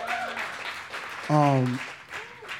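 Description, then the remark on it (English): A crowd claps steadily throughout, a dense crackling patter, while a voice lets out a loud sustained whoop midway through the applause. “y'all clap out for that.”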